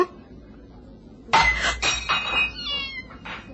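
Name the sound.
cat yowling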